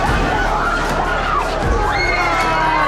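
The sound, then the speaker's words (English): A large crowd of protesters shouts and yells all at once after election polls have closed, as riot police fire stun grenades into the crowd; a dense, loud wall of overlapping voices with rising high-pitched cries, continuous throughout. “Police threw the grenade into the crowd and the leg of man was broken into two parts.”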